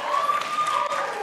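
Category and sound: crowd, audience cheering and applause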